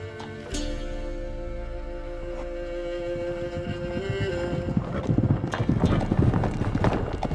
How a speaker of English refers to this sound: Some horses just arrived outside the inn.